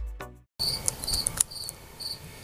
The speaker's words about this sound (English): Making another video with the crickets chirping in the background. What a perfect environment for talking about setbacks.